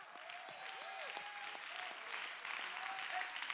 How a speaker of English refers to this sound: Somebody clap your hand. Somebody give him praise.